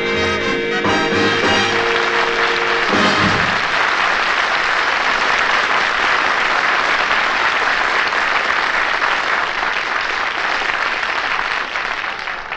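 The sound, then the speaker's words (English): A loud, sustained burst of crowd applause, dense clapping that swells and holds steady, with a few closing musical notes ringing out at the very start. “Look at that crowd, you big crowd you just drew.”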